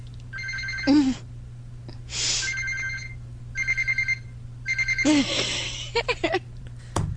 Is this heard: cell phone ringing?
yes